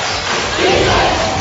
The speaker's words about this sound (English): Well, it took a lot to get the crowd into this one, but finally we're hearing some noise at the Bishop Luers Gymnasium.